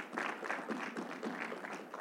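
A church audience claps together in a steady, dense wash of applause, with many hands overlapping into a continuous crackling texture at an even level, with no talking over it.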